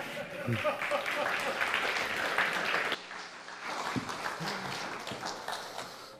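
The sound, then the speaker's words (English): A church audience applauds steadily for several seconds to welcome a guest speaker, a dense wash of many hands clapping at once, with scattered voices and murmurs mixed in beneath it. “And so please offer him a warm welcome because people don't applaud for him lately, and I've said too many nice things.”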